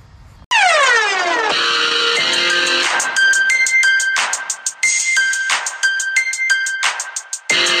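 Loud instrumental intro music opens with a downward-sweeping synth tone, then settles into bright, sustained electronic notes over a steady pulsing beat, with no voices.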